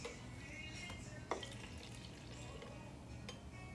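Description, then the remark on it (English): A cocktail pours quietly back into a container, a soft, steady trickling with faint drips and one brief clink partway through, with no one speaking. “Okay, so I'll pour it back in here.”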